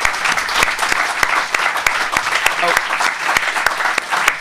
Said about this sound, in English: All right, help me give a round of applause to our amazing panelists.